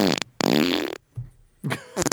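A loud, buzzy fart rips out in a long drawn blast, followed by a brief low puff and a couple of shorter sputtering bursts, close and clear with no talking.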